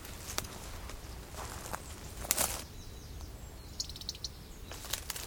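A male robin gives a warning call near its nest, about 4 feet away: a few sharp, clicky ticks scattered against rustling outdoor background noise, with faint high chirps drifting in.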